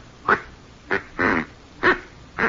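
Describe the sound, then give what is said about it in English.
Five short, nasal quacking honks from a duck call ordered from St. Louis, spaced unevenly with brief pauses, the middle one longer and buzzier, with no talking. “Oh, this is a duck call.”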